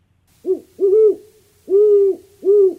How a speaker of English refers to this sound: That sounds like the typical owl that we all kind of associate